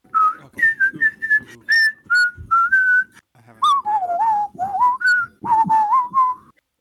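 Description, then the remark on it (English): Someone whistles the Quantum Leap TV theme tune, a bright melodic line of sustained and sliding notes in two phrases, the second dipping lower before rising again, with brief breath-like gaps between notes. “Theme from Quantum Leap.”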